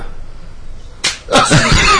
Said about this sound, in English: Totally blindsided him. Pimp slaps his ass.